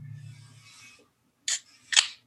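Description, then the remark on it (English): A New England style IPA by Hop and Sting Brewing Company of Grapevine, Texas, bought at HEB, being cracked open: a soft rustling hiss, then two short, sharp, crisp snaps about half a second apart, fairly quiet, with no voices. “Got this from the HEB. I'll crack it open on the air.”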